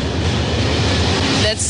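Trains roll past on their way to different destinations, a loud, steady rumbling roar with a rushing hiss that holds evenly throughout and shifts slightly near the end.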